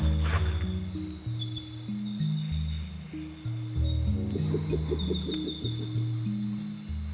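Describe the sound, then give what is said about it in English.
A dense nighttime insect chorus at a small lagoon in the Amazon, a steady high-pitched buzzing drone that never lets up, with lower droning tones shifting beneath it and one sharp click near the end. No one speaks. “We found a lovely spot, a sweet little lagoon, and decided to take turns getting up every hour throughout the night and record a few minutes.”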